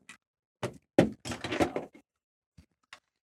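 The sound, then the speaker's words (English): The right side door opens when pulled: a few sharp knocks and thuds, a creaking scrape as it swings, then two faint taps as things settle. No voices. “It looks to be a door. I open it. It opens.”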